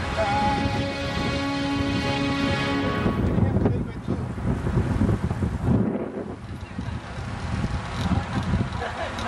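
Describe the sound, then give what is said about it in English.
Strong wind in a valley buffets the microphone in a loud, continuous rumbling roar that gusts and surges for several seconds, with a faint steady hum in the first few seconds. “It was really windy in the valley, though.”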